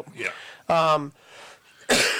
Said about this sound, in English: It is definitely winter, and I am coughing.